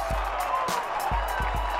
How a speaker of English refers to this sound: And listen to the crowd at Four Pines Park. The Sea Eagles announcing themselves as dark horses for the premiership, scoring 50 at the renamed Four Pines Park.